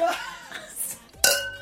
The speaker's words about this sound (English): Merry Christmas. Ho ho. Clink your glass.